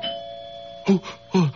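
A doorbell rings with two clear chime tones in quick succession, each dropping slightly in pitch, over a faint steady background hum.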